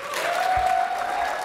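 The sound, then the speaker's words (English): Steady applause from a crowd voting in an applause poll for Dark Souls as game of the generation, a dense wash of clapping that holds at an even, fairly loud level throughout, with a faint sustained tone running beneath it. “let's do a poll of applause by just the four games that have been submitted so far.”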